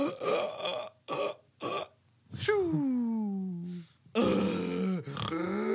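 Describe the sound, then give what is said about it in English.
A voice mimics sleep apnea snoring and gasping, with several short rough snorts, a long falling groan-like breath, then harsh choking bursts. It is loud. “I wish I snored like that because I have sleep apnea.”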